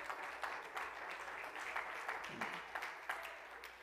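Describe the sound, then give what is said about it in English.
A church audience claps together to praise God during a morning service, a steady, sustained burst of applause, dense overlapping hand claps with faint accents, a few sharper claps standing out throughout. “Oh, let's clap our hands and praise Him this morning.”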